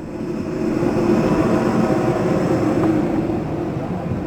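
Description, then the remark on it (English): An airport bus carrying passengers rumbles steadily across the tarmac to their airplane in Jordan, with a dull hint of sunlight on the horizon, its engine drone loud and even from inside the cabin, with no talking. “Soon we find ourselves on an Airbus that's taking us across the tarmac to our airplane.”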